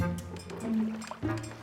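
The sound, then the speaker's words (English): A boat sailing across a calm lake, with soft sloshing and lapping against a steady low hum, continuous for a short moment, no one speaking. “And as they sailed across, Jesus fell asleep.”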